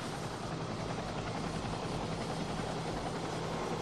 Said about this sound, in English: So, yeah, so this is soldiers getting loaded onto the chopper, wounded and dead, and. Yeah, it's noisy and chaotic.